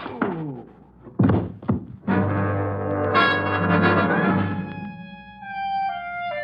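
The barrel of a gun is dropped across a person's head: a few heavy, hollow thunks land loud, then a long droning, ringing tone with wavering pitches hangs on and slowly fades.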